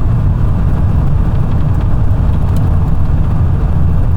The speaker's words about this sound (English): Right now you hear like cars on the road and probably some wind, if you can even hear it.